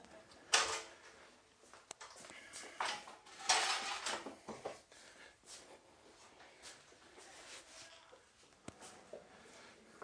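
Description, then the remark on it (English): Irregular knocks and scraping clatter of church chairs being handled and stacked, with a few louder bangs among softer shuffling, with no talking. “What about these chairs as well? I'll stop there, but I've got several more stacks of chairs out there.”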